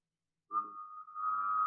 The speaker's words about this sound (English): So I can, I don't know if I can do it now just because I got a little thing in my throat, but I can hum and whistle at the same time.